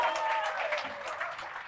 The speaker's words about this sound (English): Round of applause for the good daughter-in-law.